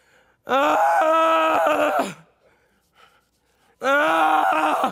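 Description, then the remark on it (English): A voice imitates Job's groaning from the biblical story, a long, anguished groan, loud and wavering as it drags out, then drops off; after a short quiet gap a second strained groan begins. “So, and my groans pour out like water.”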